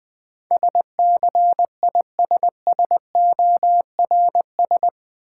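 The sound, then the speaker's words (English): The word "scissors" sent in Morse code at 20 wpm after the hint "something used to cut": a steady mid-pitched tone keyed into quick dots and longer dashes, forming eight evenly spaced letter groups, with no voice. “Easy Words with Hints - 20wpm”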